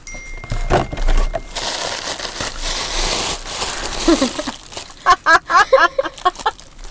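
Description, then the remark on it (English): Rustling paper crinkles and tears for a few seconds as a gift is unwrapped and an old beer-case cardboard box is opened, followed by a run of short, rhythmic vocal bursts. “It's an old case of beer box. So you can literally just cut it open.”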